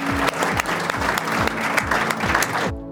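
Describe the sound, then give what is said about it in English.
An audience at the Farmers Weekly Question Time event in Harrogate, Yorkshire, claps steadily, a dense, continuous crackle of many hands at a fairly loud, even level, which cuts off abruptly just before the end. No one speaks over it. “We all deserve a round of applause.”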